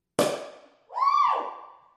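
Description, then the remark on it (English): A single sharp champagne cork pop rings out in a closet and fades quickly, followed by a loud rising-then-falling whooping tone, likely a voice, that trails off. “it's time to pop some fucking champagne.”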